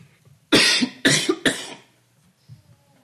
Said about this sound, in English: Apologize for this dry cough, I'm not sure why that happened like that, but sorry about that.